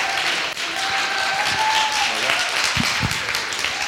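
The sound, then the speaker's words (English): A crowd applauds steadily for a speaker being introduced to come up and preach, a dense wash of many hands clapping at a constant loud level, with a few faint tonal whistles or cheers and murmuring voices mixed in. “Let's give her a big round of applause, you guys.”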